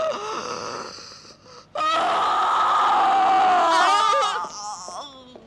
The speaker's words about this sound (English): Horrible scream that is just with echo going on and on and with echo. And it's, I think it's electronically processed too. Yes. Some of the tape is like slowed down too, like they took a tape and stuck their finger in the loop to like drag it on.